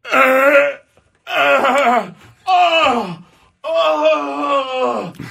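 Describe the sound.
A man's voice imitates four loud, drawn-out groans of pain, acting out writhing in pain while getting out of a car at a gas stop, each starting high and sliding down in pitch, with short pauses between them.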